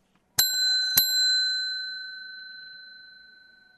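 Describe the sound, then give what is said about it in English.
A small bell is struck twice in quick succession, its bright metallic ring lingering and slowly fading away over a few seconds, clear with no one talking. “Oops, where's the bell?”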